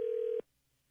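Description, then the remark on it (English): A single steady electronic ring tone from a phone line, a waiting-for-pickup ringback while calling Sister Jean, sounds for under half a second and then cuts to silence. “I don't think she's going to pick up.”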